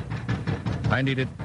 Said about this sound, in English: What's that knocking?